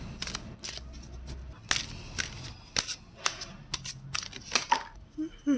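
A deck of tarot cards being shuffled, with a series of crisp, papery flicks and snaps coming in uneven bursts over several seconds.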